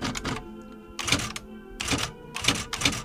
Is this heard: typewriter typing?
yes